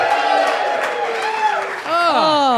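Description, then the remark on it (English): An audience member at a live show yells loudly and continuously from the crowd, his shouting voice rising and falling in pitch, with faint audience murmur and cheering in the background. “Someone's yelling at us already.”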